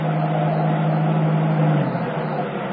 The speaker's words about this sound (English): There's a car coming down the pier.